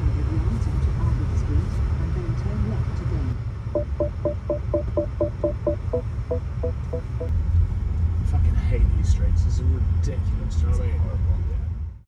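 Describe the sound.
A steady, loud low engine rumble fills a car interior throughout, with muffled voices and a brief run of rapid, evenly spaced ticks partway through.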